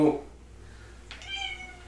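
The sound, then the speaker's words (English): A pet cat, Lou, gives one drawn-out meow about halfway through, moderately loud, after a brief murmur of a voice at the very start. “Okay, we have cat discussion now.”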